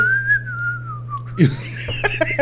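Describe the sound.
A person whistles a single sustained, gliding note for over a second, then voices break in with brief overlapping talk and noise while a steady low hum runs underneath.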